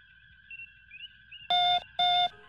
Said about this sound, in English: Captain, I'm receiving a signal. It's faint, but I think I can boost it and remove some of the interference.